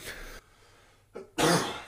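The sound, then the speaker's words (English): A person coughs, several harsh bursts with a short pause between them, the last one the loudest and longest, with no talking. “I prayed before our podcast for my cough to not be as strong, and God is not answering my prayer, so.”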